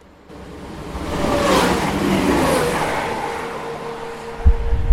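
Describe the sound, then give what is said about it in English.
A train rushes past with a broad roaring rumble that swells quickly and holds steady, a thin metallic whine running through it, then a couple of heavy thuds near the end. No one speaks. “Well, here's another train, mate. Hold on to your hats.”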